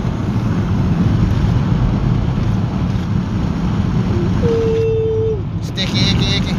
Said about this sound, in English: Y'all hear the wind in the background, right? That's the window rolled down. That's the window rolled down. We're only going 67, we're good.